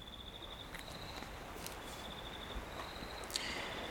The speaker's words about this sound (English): So let's add a little bit of seaside to these crickets.